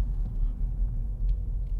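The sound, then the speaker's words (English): A steady, deep engine rumble from a small sports car, continuous with a low throbbing texture and no voices over it. “Yeah, I really, really like this car.”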